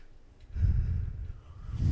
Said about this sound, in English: Excuse me. Thank you for yawning during my answer.